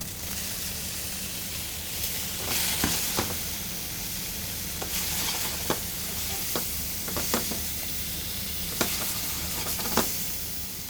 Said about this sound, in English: Meanwhile, is that going, I'm going to start cooking the steak. So nice hot pan.